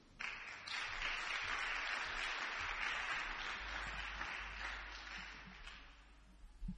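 A church audience breaks into sustained, dense applause as a singer comes up to minister to God in song, many hands clapping together in a steady roar that holds for several seconds before thinning slightly toward the end.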